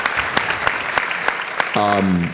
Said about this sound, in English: Bill, if you're watching, we love you. We miss you. We know you're with us, and we do all this for you. Give Bill Lucy a round of applause so he can hear this.